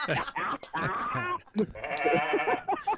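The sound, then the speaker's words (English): Several goats bleat one after another, wavering, nasal cries packed close together and fairly loud, with brief pauses between bursts and no talking. “It's like, either one of them is going to be it's a goat parade. Just depending what kind of goat.”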